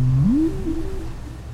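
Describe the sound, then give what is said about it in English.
A single low, tonal whale call, recorded for research in the Bay of Fundy off the Canadian coast, rises in pitch, then wavers and fades into a steady rumbling background hum of shipping noise. “As part of his research, Tayac recorded the calls that whales make.”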